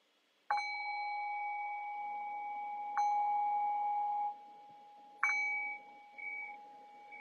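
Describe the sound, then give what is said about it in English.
A meditation bell is struck three times to mark the shift from meditation practice back to conversation, each ring a clear, sustained metallic tone that lingers and overlaps slightly before the next strike, with no voices present. “And I'll cue that by ringing the bell 3 times.”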